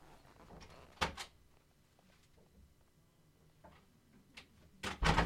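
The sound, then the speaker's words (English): A pair of sharp, knock-like thumps on a door, then a long quiet stretch before another cluster of louder raps near the end. Distinct, with no voices. “I thought I heard someone knock on the door.”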